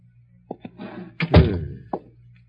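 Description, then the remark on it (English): A door being opened: a couple of light latch clicks, then a heavy wooden thunk and a short rattle, with a final click as it settles. No voices. “Gorrell was still unconscious when I opened the door about 15 minutes later”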